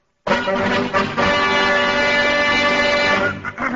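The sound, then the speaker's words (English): A temple bell is smashed to demonstrate high vibrations, bursting in with a loud metallic crash that rings on as a dense, sustained clangor of layered tones for several seconds before briefly wavering. “You have just heard the high vibrations when our friend here smashed the temple bell”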